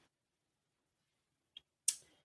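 A woman quietly turns a paper page by hand: a small tick, then a brief, crisp papery swish that fades quickly against near silence.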